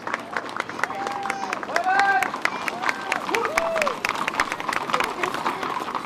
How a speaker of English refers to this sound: After the horses have paraded through parts of downtown, an eager crowd waits for the soldiers to dismount.